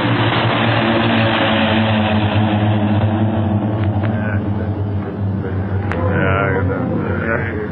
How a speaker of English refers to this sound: Okay, but don't move. No one must move until those planes are out of sight. Boy, oh boy. I thought we was going ashore when that one plane nosed down toward us.